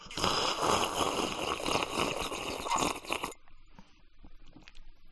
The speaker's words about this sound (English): I'm gonna take another sip of my drink because my throat hurts.